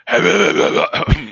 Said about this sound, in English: Hold on one second, I gotta clear my throat before I start this.